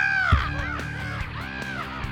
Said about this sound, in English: Murder of Crows at 2 o'clock. I see him. A remarkably dense murder of crows headed straight for us. Incoming.